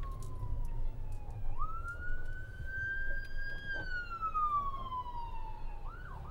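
An ambulance siren wails steadily, its pitch sliding up and then gradually down as it passes by, over a low rumble of traffic.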